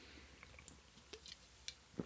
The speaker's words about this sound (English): Let me get another sip here of my beverage.